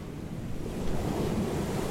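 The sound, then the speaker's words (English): Ocean waves wash against the shore of a grey, desolate seascape in a steady, rumbling roar, swelling slightly midway, with a breezy hiss over the top and no voices. “the waves bring these memories in and deposit them on the shore for us to find and pick through”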